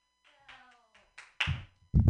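A comedian claps for herself in two short, loud bursts, each a quick flurry of claps, following a few faint, higher tonal sounds at the start.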